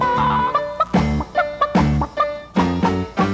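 Araucana chickens, a South American breed, cluck in a steady stream of short, overlapping calls, fairly loud, with brief squawks mixed into the busy chatter.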